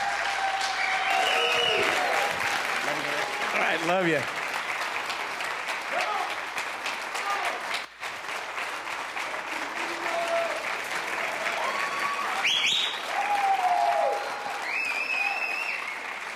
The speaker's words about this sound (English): Please put your best hand clap together for